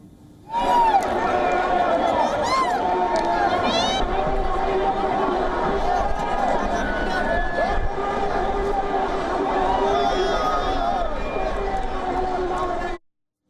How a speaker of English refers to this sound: A massive crowd stormed Sri Lanka's presidential palace and the secretariat. This is what it looked like.